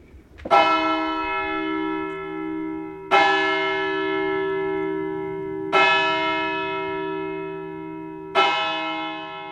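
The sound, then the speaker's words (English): Bells in a church bell tower in Pontito ring out in slow, evenly spaced strikes, four heavy tolls each blooming into a long, shimmering hum that lingers until the next one lands. No voices are heard. “And there's the bell tower in the church that Frank wanted us to see.”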